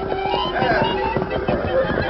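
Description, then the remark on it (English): Several Palomino horses ridden by cowpunchers, who cannot control them, whinny with high, wavering cries while hooves clop in a quick, uneven rhythm, the whole scene loud and busy with no one speaking. “18 cowpunchers discovered they couldn't control their Palomino horses.”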